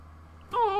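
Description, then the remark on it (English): A single high, drawn-out meow, imitated by a voice, rises sharply then slides downward in pitch. It comes in loud halfway through, after a quiet stretch with faint background hum. “And then you see, crawling over his shoulder, like, meow.”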